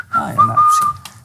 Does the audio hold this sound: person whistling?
yes